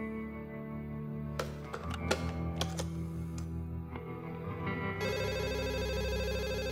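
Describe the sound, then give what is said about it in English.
Red telephone sounds: a few sharp clicks and clacks of the handset being picked up and dialed to call JFK, then a steady, buzzy ringing tone that holds until the end. “Nice red phone.”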